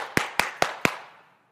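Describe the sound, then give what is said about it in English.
Four quick, evenly spaced sharp taps beat out a fast rhythm like a pounding heartbeat, each hit crisp and bright, with a short ringing decay after the last one and no talking. “When I first walked up here and I'm doing like this in front of you guys, my heart is thumping like this.”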